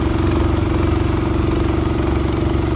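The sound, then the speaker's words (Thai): A motor boat engine runs steadily throughout, a loud, even low drone with a strong humming tone and constant chugging, with no voices. The boat is surveying the flooded waterways and damaged farmland of the Na San Klang community in Ubon Ratchathani province. “ตอนนี้ลงเรือสำรวจลำน้ำกันนะคะของชุมชนหน้าสารกลางค่ะบ้านหนองแกบ้านหนองกลางตำบลจระแนเราเองค่ะ”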